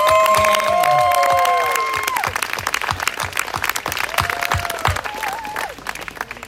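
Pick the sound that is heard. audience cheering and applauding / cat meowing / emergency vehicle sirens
audience cheering and applauding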